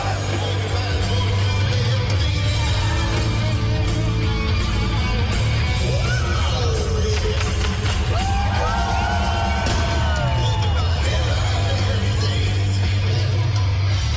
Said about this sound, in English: The clip you're listening to also has fireworks going off prematurely.